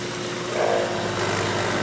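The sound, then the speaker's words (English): A power saw's motor, as the saw is turned off, drones with a steady, buzzing hum, holding a fairly even level throughout with a slight swell midway and no voices. “Now you turn off the saw.”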